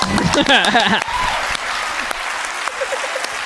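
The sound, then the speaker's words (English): Loud, rapid hand clapping into the microphone, a dense rattling burst that runs steadily for several seconds after a brief moment of voice at the start, overloading the microphone and setting its lights flashing. “I just made the thing freak out when I clapped a lot.”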